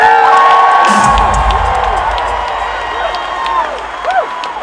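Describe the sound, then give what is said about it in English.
A large concert crowd roars with cheers and applause, loud and sustained, with high whoops and shouted voices rising above the dense clapping before it gradually eases slightly. “I think we should give her a really big round of applause.”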